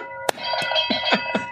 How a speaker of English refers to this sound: Hit the fucking buzzer. Hit the fucking buzzer.